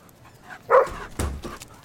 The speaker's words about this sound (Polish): Ja tylko tak z radości szczekam.